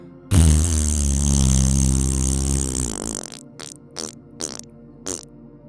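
During a class breathing exercise, a loud, buzzy raspberry is blown with the lips, held for about three seconds and wavering in pitch, followed by four short sputtering bursts. No one speaks.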